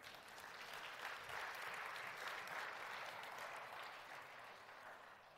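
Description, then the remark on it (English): A crowd applauds a newborn baby who is present, steadily for several seconds, a dense wash of clapping that swells slightly and then eases off, with no voices standing out. “You could give her a round of applause.”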